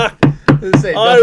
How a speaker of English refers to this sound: I just knocked on wood. I did it right above the microphone so everyone heard it.